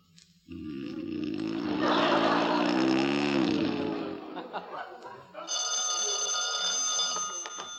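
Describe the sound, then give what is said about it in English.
A telephone bell rings steadily and fairly loud near the end, following a stretch of low groaning and mumbling vocal sounds. “Where is that darn phone?”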